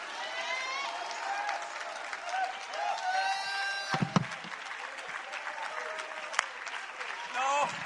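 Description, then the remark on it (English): An audience claps in worship of God in a steady, dense wash of applause, with cheers and shouting voices rising over it throughout and a few sharp louder claps standing out. “You should not clap like Domino's Pizza just went on sale 2-for-1.”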